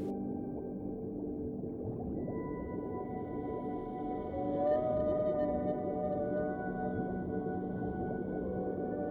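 Whale song rises and drifts in long, sustained tonal calls, with a slow upward-sliding moan midway, layered over a steady low rumble of water. No voices are heard.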